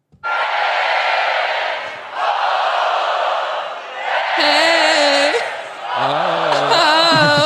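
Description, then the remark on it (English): A loud crowd sound effect played from a soundboard as a welcome on a show recorded in a room with only the hosts roars and cheers continuously, with whoops and a few shouting voices rising out of the din in the second half, swelling and dipping slightly throughout. “Having that loud of a crowd in like a room with just us.”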